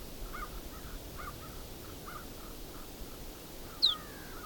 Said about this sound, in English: That's the snow bunting. Little pute. And some buzzes.